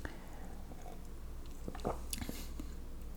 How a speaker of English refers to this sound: So cheers to you guys. I'm going to take a little sip. Might edit it out, might not.